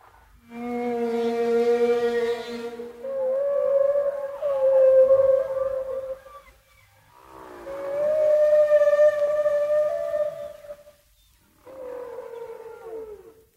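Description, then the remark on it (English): Humpback whale song recorded underwater off the coast of Bermuda in the Atlantic Ocean: long, sliding tonal moans and wails in four separate phrases with brief pauses between, rich in harmonics, loud and resonant with no voices. “Now, Columbia's SQ record is going to put you magically and quadraphonically off the coast of Bermuda, fathoms under the Atlantic Ocean, hearing the song of the great humpback whales.”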